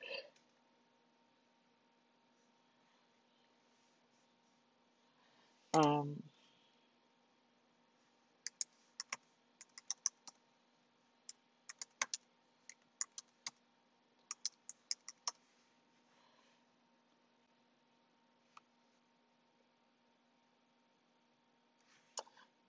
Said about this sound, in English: Hold on, I'm typing the verse in. I know y'all like, she's typing hard. Sorry, fam. I got my nails.